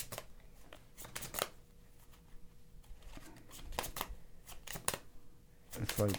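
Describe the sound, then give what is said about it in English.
Pokemon playing cards are flicked by a player during a game in quick, crisp snaps, coming in short irregular bursts of sharp papery clicks against a low background murmur. “He flicks his cards like that, which is his tell.”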